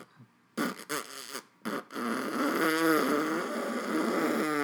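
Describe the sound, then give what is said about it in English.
A valveless horn played by lip buzzing gives several short, rough blasts, then one long, sustained brassy note that wavers slightly but holds about the same pitch. It is fairly loud and plays alone, with no talking. “I know there's a way to change the pitch when playing a horn that doesn't yes. have valves. It's the buzzing.”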